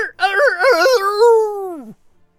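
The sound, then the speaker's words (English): A person imitates a rooster crow: a loud voiced call with a few quick pitch wobbles, then a long sustained note that slides downward and cuts off after about two seconds. “That was me doing a rooster voice then.”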